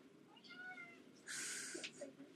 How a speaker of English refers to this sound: Should we just let the kitty in? Let's let the kitty. He's just going to meow pathetically until we let him in. Come on, kitty.